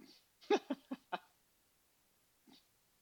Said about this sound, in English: Oh, my dogs are fighting.